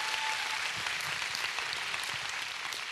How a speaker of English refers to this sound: Yeah, give her a round of applause.